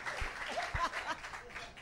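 An audience applauds the winner of a game and the panel, a dense wash of many hands clapping at even loudness, with a few brief whoops and crowd voices rising faintly through it.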